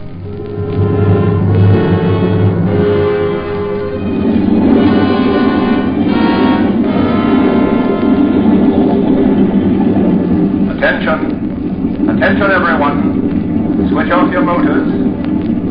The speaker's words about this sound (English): Switch off your motors. Switch off your motors. Nobby, cut the motor.